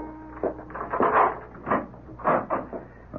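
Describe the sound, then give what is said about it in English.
A door is opened after a door chime sounds, with a series of creaking, rattling wooden bumps spread over a few seconds, moderately loud and with no voices. “I went to the door.”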